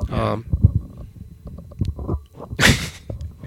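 Microphone handling noise: low, uneven thumps and rumbles with a couple of sharp rustling bursts as the mic is shifted about, fairly loud, with no clear speech.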